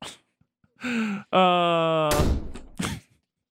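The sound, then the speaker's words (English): A voice imitates a door swinging shut, a drawn-out creaking hum ending in a loud, breathy slam and a shorter thud afterward, fairly loud. “disrespectful was this kid came to my house with his popcorn, so I slammed the door in his face.”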